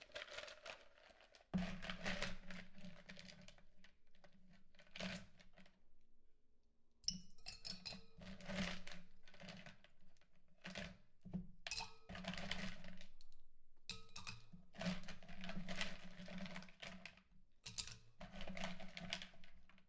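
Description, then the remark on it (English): Ice cubes are put into a cocktail shaker containing lemon juice in steady bursts of sharp clinks and rattles, pausing briefly before resuming, over a faint low hum with no talking. “Let's go ahead and start putting ice into the shaker.”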